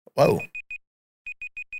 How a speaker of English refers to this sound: Whoa. We're beeping. I think that's the timer.